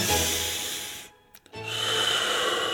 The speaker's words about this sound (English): Deep breath.